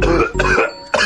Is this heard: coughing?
yes